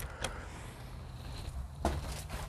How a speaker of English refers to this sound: Oh, wait, let me just open my door.